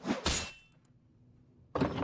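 A heavy video game door thunks open with a loud mechanical clunk that fades into quiet, then a second dull impact lands near the end.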